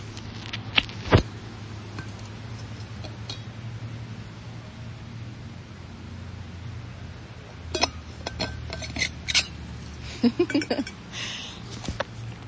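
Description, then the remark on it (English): A water bottle lid being twisted back on: a couple of sharp early clinks, then a burst of quick, irregular plastic clicks and scrapes over a steady low hum, with no talking. “I'm laughing because my friend Kwan always makes fun of me for twisting the lid of my water bottle back on. The sound is obnoxious.”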